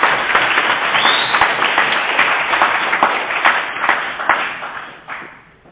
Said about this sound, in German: Hat schon geklatscht, hat schon geklatscht, hat schon geklatscht.